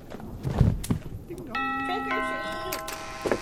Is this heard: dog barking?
no